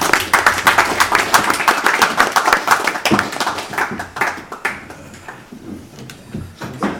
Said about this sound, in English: So, round of applause, boys.